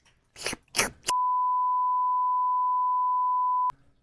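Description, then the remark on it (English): A moment of talking is abruptly replaced by a loud, steady censor bleep that holds one pure tone for about two and a half seconds before cutting off sharply. “That's got to be beeped.”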